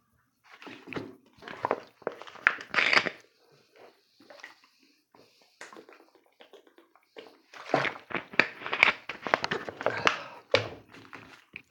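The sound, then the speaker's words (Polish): Someone drinks a sip of water from a Biedronka water bottle: a series of irregular clunks and plastic crinkles, sloshing water and swallowing sounds, louder toward the end, with no one speaking. “Troszkę łyk wody.”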